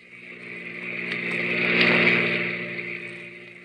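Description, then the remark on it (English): A car engine swells as the vehicle approaches, peaks loudly, then fades as it speeds past and away, a single smooth pass with a steady engine drone. “car whipped by.”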